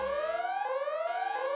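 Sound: alarm going off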